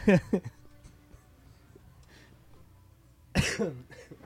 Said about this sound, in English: I'm fighting a cough. Not a cold, but a cough. This whole episode.